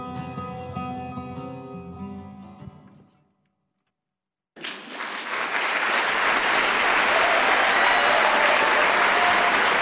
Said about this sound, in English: The room was filled with the sound of clapping hands and shouts of admiration as everyone expressed their appreciation for the musician's talent.